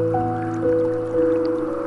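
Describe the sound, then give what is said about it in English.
A gently flowing water stream trickles and drips steadily beneath sustained, soft piano tones that hold and shift in pitch; no one speaks. “Soothing Piano and Water Stream”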